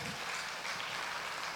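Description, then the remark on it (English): A church audience claps together for the upcoming Hope Day on Long Island, a dense, steady wash of overlapping hand claps, fairly soft and even throughout, with no individual beats standing out and no voices. “Yeah, you got to clap for that.”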